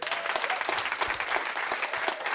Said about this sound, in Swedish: En applåd